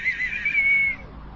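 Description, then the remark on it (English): A single shrill whistle is blown in one steady, high-pitched blast lasting about a second, then cuts off, leaving only faint background hum. No one speaks. “You don't like the whistle, do you”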